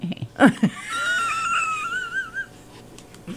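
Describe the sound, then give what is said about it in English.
A person imitates a horse whinny: a couple of short breathy bursts, then a high, quavering vocal tone that wavers and trails downward for about a second and a half. “Was that a horse?”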